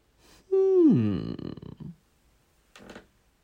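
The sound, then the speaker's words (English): A chair gives one drawn-out, groaning creak that slides downward in pitch and rasps out over about a second, followed by a short soft rustle. “Again, that's the chair.”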